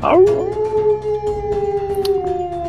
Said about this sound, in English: Last wolf, who's kind of behind another rock, will take his movement to come between the rock, this giant kind of boulder in the way. He won't get close enough to do any attacks, and he will let out a howl.